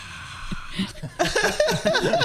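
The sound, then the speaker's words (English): A voice imitates a cheering crowd, a loud, breathy, hissing roar with wavering vocal tones that bursts in after a quieter opening second and holds steady to the end. “That was my fake the cheer of the crowd that's here.”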